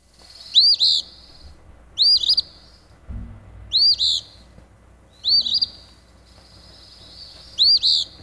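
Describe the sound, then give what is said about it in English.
An Eastern Phoebe sings its short, raspy two-part phrase six times, evenly spaced about every second and a half, clear against a quiet background with a faint low rumble. “It's going to be the Eastern Phoebe.”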